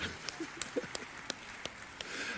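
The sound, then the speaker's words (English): Scattered, irregular claps from an audience applauding the elders for getting around the stage, about seven or eight sharp hits over a soft, steady hiss, fairly quiet and with no voices. “Because what frightens me as we begin this season, could you guys applaud the elders for really getting around the stage well?”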